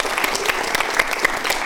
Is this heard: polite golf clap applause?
yes